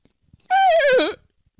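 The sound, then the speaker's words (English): A voice imitates a horse whinny once, a loud, high, wavering call that slides downward and trembles at the end, heard alone against silence. “The horses be like...”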